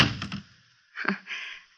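A low, heavy thud of a door shutting as someone leaves, followed a moment later by a sharper click and a brief rattle, like a latch catching. No voices, moderately quiet.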